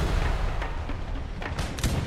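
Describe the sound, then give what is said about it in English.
Cannon fire from Hari Singh Nalua's Sikh army in battle against Dost Muhammad Khan's armies booms several times in quick, irregular succession over a constant low rumble of battle noise, with the heaviest blasts landing near the end. No one speaks. “And Hari Singh immediately, you know, orders attack, and he does next day come and fires the cannons.”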